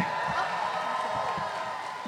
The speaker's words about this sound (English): Give it up for Ming-Na Wen, everyone! Yeah. How about another giant round of applause for these two incredible people?